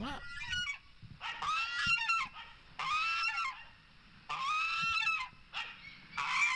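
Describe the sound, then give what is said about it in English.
A goose in mourning honks repeatedly in drawn-out, wavering calls, about five bursts separated by short pauses, fairly loud with no one talking. “the sounds of a goose when it is in mourning”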